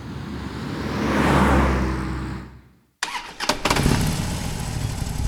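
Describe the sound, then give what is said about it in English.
A motorbike engine at about 95 decibels roars past loudly, swelling and fading over a few seconds, then a cut to another rough burst of revving engine noise. “A motorbike, 95 decibels.”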